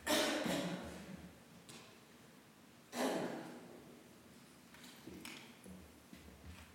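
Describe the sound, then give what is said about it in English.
A person coughs in a few separate, harsh bursts spaced seconds apart, with two stronger coughs followed by softer ones, fairly quiet, with no talking. “I'm coughing.”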